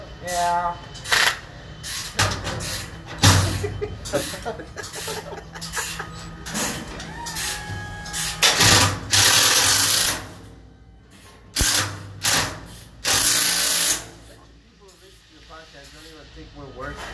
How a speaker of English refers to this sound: You don't hear all the fucking... the impact and the tools being slammed around?